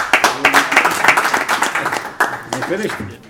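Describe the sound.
A crowd applauds with steady, dense clapping that fills the room, loud and close, while a few voices call out briefly toward the end.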